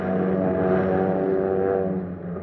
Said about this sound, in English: Planes for defense and attack.